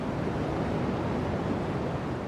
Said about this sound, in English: But really, I think the deep throb of cosmic background radiation.